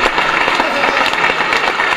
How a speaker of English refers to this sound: That's way too much clapping.